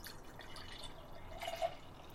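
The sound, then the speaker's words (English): Sluice Oatmeal Stout (7.5%) from Iron Springs in Fairfax, California, poured from a small growler into a glass: a soft, steady trickling and gurgle of liquid with a brief splashy swell near the end, fairly quiet, with no voices. “And the pour.”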